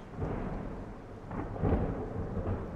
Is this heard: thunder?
yes